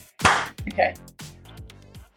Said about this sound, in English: Okay. That's cool. Yeah, it sounds like I know what I'm doing, which I like about the clap.